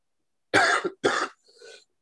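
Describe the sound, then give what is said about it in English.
Two quick, forceful sneezes burst out, one right after the other, followed by a softer, breathy exhale trailing off. No one speaks. “Bless you.”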